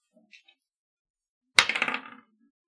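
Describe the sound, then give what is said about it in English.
Dice rolled for a luck roll clatter onto a hard table, landing on a six: a sharp initial impact followed by a quick series of bouncing, rattling clicks that settle within half a second, fairly loud, with faint small clicks just before. “What a dick move, dice. Six.”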